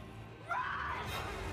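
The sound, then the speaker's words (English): A woman in a film clip lets out a sustained high-pitched scream that starts abruptly and holds, over a low background rumble. “Is that my poor nurse screaming?”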